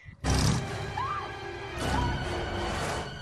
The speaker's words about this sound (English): I might want to open the garage so you don't die of monoxide poisoning. Yeah. I love how he's revving the engine like it's like a fucking Mustang.